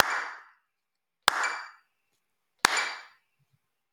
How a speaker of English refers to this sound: And then, so now I'm going to clap, and if I can hear the metronome, I'm doing it wrong.